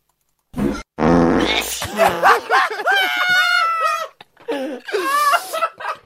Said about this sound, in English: Okay, and now I would like you to combine your fart with the pre-recorded fart. Do I put a sneeze in? Wait, no, do two farts. Your fart, pre-recorded fart, then the pre-recorded sneeze.